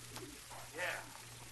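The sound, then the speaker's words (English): A pigeon gives a brief, soft warbling coo in the middle of a quiet stretch, over a steady low background hum. “Don't look like you hurt any of my pigeons”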